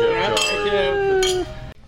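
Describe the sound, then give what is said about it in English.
Glasses clink together in a toast at Claude's restaurant in the Hamptons, two bright taps about a second apart, each leaving a sustained ringing tone that fades out, with faint murmuring voices in the background. “Cheers, everybody. Everybody raise a glass”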